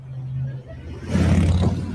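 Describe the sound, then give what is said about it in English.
A motorcycle in a motorcade hums with a steady low drone, then swells abruptly into a louder, rougher rumble that holds through the end as the bike passes close by. “Watch how close this motorcycle was.”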